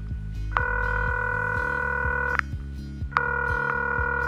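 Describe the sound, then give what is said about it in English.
A phone call to a mother rings out: two long, steady electronic ringback tones separated by a short pause, fairly loud, with a soft rhythmic beat pulsing underneath. “For I am going to cook with my ma today. Over the phone, of course.”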